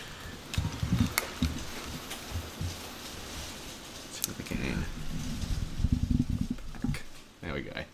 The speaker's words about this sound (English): I was going to enjoy listening to the rain some more.